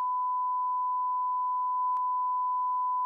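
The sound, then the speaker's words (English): A steady, continuous censor bleep tone at a single mid-high pitch, held at even loudness for about three seconds with a faint click partway through and no voices. “You should put a beep now.”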